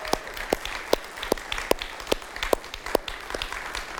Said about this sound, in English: Can we give a round of applause for them? They don't want it.